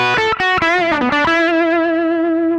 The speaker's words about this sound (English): Now, if we just back up from the volume there, we get some... So just by backing up from the volume there, we get some nice sort of overdriven tones that are less extreme.